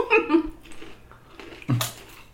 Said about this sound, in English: You think the mic is picking up the chip? Oh, yeah. Crunching? Yeah. But I've got a chip filter. Oh, good. Filter.